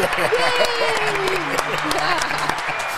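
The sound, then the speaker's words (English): An applause sound effect plays: a dense burst of applause, steady and fairly loud for about three seconds, with cheering voices and whoops rising and falling over the clapping. “Oh, that's not the applause.”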